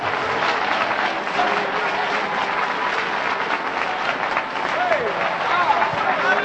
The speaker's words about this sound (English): And I think you ought to clap your hands and give him some praise right now.